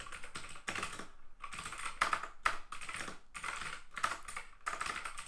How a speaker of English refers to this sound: Bro, I can't type if the mic is that close, man.